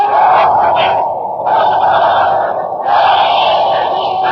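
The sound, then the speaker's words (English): A crowd at a train's arrival roars and cheers, giving three cheers for Fred Allen in three loud, sustained swells, each separated by a brief dip, with a muffled, broadcast-like tone throughout and no clear speech. “Look at that crowd. They're giving three cheers for Fred Allen.”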